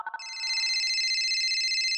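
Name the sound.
telephone ringing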